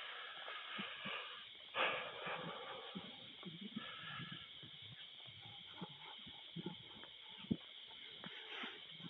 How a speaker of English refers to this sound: I'm walking uphill here, so I hope I'm not breathing too heavy.